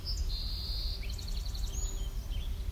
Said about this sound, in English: Hip, hip, hooray, boys. Anything that sounds like hip, hip, hooray, boys, I assume it's a song sparrow unless it's something else. It's a good rule of thumb.